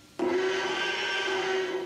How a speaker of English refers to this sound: So every time the T-Rex screams in the first Jurassic Park, that baby elephant is part of the major roar. Here it is by itself, the little cute baby elephant and the high-pitched scream that it made.